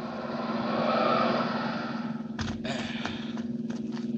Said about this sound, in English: There's a car coming up the road with two men in it.